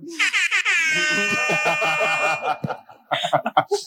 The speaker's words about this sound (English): Where's that air horn?